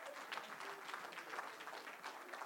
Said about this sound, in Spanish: ¡Aleluya! ¡Un aplauso al Señor! ¡Amén!